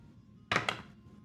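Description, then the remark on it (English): A single die is rolled onto a table during a game, after targeting an opponent, making two quick, sharp clacks in rapid succession before settling on a 5, set against a quiet background with no talking. “after targeting an opponent, you each roll 1 die.”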